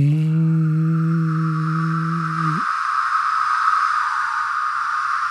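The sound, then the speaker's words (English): A dense, unbroken chorus of millions of periodical cicadas (Magicicada septendecim) forms a steady, shimmering drone throughout, with a low humming tone underneath for the first half that then cuts off abruptly. “And the thing is, when you actually hear millions of them, all you hear is...”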